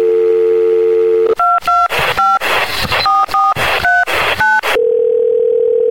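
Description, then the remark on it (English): A steady telephone dial tone hums, then a quick run of about eight touch-tone beeps punches in the number of the Movie Zone phone line for the Larry H. Miller Megaplex Theaters before the dial tone returns, loud with no voices. “All right, dial back out to the Movie Zone phone.”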